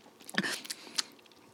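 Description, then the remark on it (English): Wet, smacking chewing noises made right into the microphone: a quick run of crunchy, clicky bites and lip smacks, moderately loud, with no talking. “There's nothing I hate more than the sound of someone eating on a podcast.”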